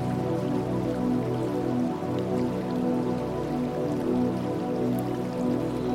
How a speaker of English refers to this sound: And of course, the water crashing down in all its glory.